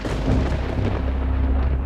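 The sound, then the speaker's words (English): A deep, loud rumble of thunder rolls continuously through the short stretch, heavy in the low end with a crackling, noisy texture and no pause or voices. “Weather can be unpredictable, and sometimes you just can't help but get caught in a storm.”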